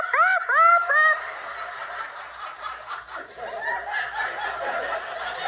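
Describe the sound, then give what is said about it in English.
A voice imitates squawking seagulls: three sharp rising squawks up front, then a dense, overlapping flurry of gull-like cackles and chatter that carries on steadily to the end. “You gotta remind me to listen to that seagull tape before we do the show.”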